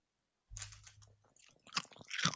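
Chicken tikka flavoured crisps being crunched, with dry crackling bites and chewing that start softly and build to louder, sharper crunches toward the end, with no talking.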